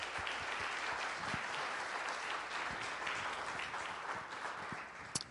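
A crowd applauds steadily for a church leader during Pastor Appreciation Month, many hands clapping in a dense, even patter that stays loud throughout and tapers slightly near the end, with no voices standing out.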